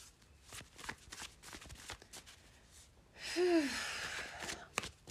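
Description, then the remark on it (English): Tarot cards from the Taramucha deck are shuffled in a run of crisp, irregular flicks and taps, then a louder breathy rush of air takes over for the last couple of seconds. “Shuffling the tried and true on this channel, we have the Taramucha.”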